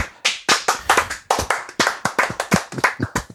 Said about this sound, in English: More importantly, in Modern, Yorion Sky Nomad banned once and for all. Yes! Slow clap.